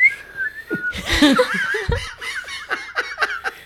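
A breathy whistle made by sucking air in, with wavering pitch, starting alone and then mixing with bursts of giggly laughter as the tone warbles on and off.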